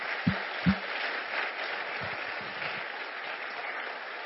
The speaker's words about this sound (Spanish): Estos hermanos han trabajado duro, han sacrificado mucho, y damos gracias a Dios, así es de que ahora podemos aplaudir juntos.